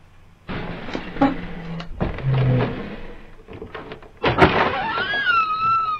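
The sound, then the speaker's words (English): A door opens with a series of heavy mechanical clunks and rattles, ending in a sharp bang and a drawn-out whining creak, loud. “Much appreciation for finally opening the door.”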